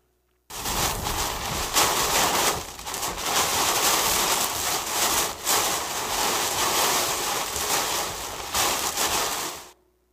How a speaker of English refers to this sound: This is a driver in Ontario, Canada, of June 1st of last year, driving through a torrential downpour. It's only like 10 seconds of this video, but look what he or she is driving through.